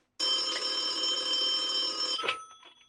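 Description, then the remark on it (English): A telephone bell rings loudly in one continuous two-second burst, a bright metallic jangle that stops abruptly and leaves a short fading echo. No one speaks. “Yes, and if you can hold a bottle, you can dial a phone. Give her a call.”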